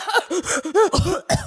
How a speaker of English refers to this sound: It's that like when you laugh but it's like this raspy laugh and then you just start coughing. And laughing's the worst when you've got that like catch in your throat because then you know it's going to be a combo of a little laugh cough.